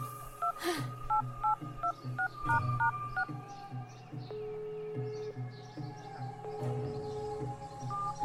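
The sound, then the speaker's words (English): A phone number is punched in to call animal control: a quick run of about nine touch-tone beeps, evenly paced, over a low steady hum, followed by a longer held tone. “Baby, call animal control!”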